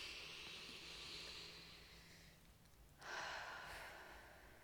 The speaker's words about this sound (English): Everybody, this includes you, whoever's listening. Take a deep breath. Ready? Nice.